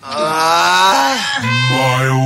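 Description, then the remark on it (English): A person lets out a loud, drawn-out groan, a continuous voiced sound whose pitch sags and then drops lower partway through, with no words spoken. “No, only, I mean, that's an incredible fact, but only because I thought the groan in it could be a dolphin's name.”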